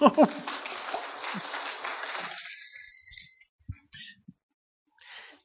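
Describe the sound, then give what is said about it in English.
A church audience claps in thanks for the word of God, a dense, steady burst of applause that thins and fades out after about two seconds, followed by a few scattered faint knocks and rustles. A voice briefly sounds at the start. “You can clap for that.”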